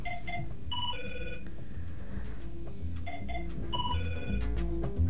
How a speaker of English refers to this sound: All right, we're just going to ignore that phone that's ringing. I always do. But I'm kind of curious, though, who it is.